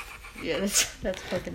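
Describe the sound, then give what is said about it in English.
A person imitates a pug-mix dog snoring with their voice, a few breathy, snorting grunts with a nasal rasp, repeated in short uneven bursts. “Nah, but it was funny because he's mixed with the pug. He has mm-hmm, like little, big little cheeks. Mm-hmm. So when he fucking snores, it goes.”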